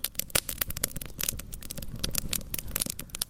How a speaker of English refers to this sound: Oh, it sounds so amazing. I love how you can hear the echo of the fire against the trees.